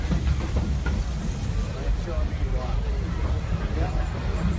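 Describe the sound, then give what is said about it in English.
A passenger train rumbles loudly and steadily as it comes to a full stop, with a thin metallic squeal near the end and muffled voices faintly underneath. “I do ask that you remain seated until the train comes to a full and complete stop.”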